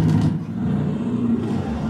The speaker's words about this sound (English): That bear sounded like he was in a car. Yeah. it did, with the windows rolled up. It's a V8.